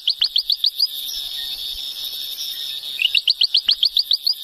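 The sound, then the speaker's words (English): A ventriloquial frog's call made of rapid, high-pitched chirping pulses in two bursts, a quick rhythmic series at the start and another after a short pause, over a steady thin hiss. Recorded in a remote, isolated forest on rugged mountains. No one speaks. “One of the species we came across was the ventriloquial frog.”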